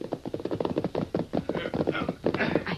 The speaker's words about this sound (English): It's the posse, all right. No prisoners. The horses sound tired.